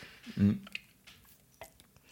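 A quick sip and swallow of beer: a soft gulping burst, then a few small wet mouth clicks in otherwise quiet surroundings.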